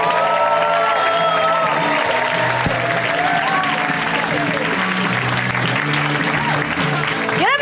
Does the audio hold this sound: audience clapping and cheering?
yes